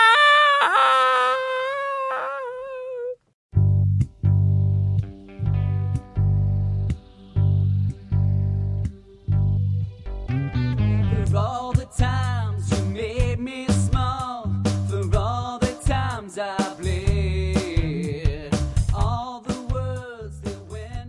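A rock song opens with a lone wailing, wavering vocal line, then a loud band crashes in with thumping bass, pounding drums and distorted guitar while a voice sings over the dense mix.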